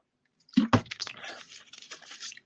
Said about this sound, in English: Drink a little bit of this water.